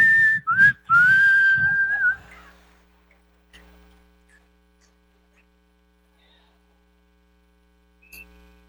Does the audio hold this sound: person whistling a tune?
yes